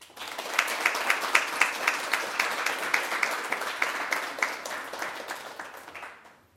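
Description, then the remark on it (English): An audience applauds the readers after a reading, clapping steadily for several seconds, a dense wash of hand claps with some sharper individual claps standing out, then the applause tapers off near the end. “Let's have a last round of applause for our readers,”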